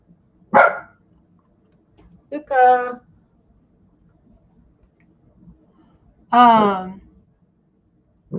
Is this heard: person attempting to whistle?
no